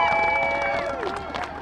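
A crowd at a solidarity march claps and cheers loudly for a couple of seconds, with dense continuous clapping and raised voices or whistles sliding through the noise.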